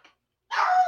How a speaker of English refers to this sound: Oh boy, here comes my dog. Uh oh.